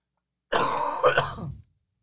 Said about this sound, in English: I'm going to cough again, so Nurgly, get ready.